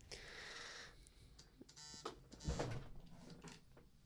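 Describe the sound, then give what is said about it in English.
A phone alarm set for 8:00 goes off faintly, sounding as a buzzy electronic tone with a series of short, harsh beeping bursts over a few seconds, heard without any talking. “I had an alarm for 8:00. That was for yesterday.”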